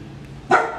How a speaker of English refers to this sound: Woof woof.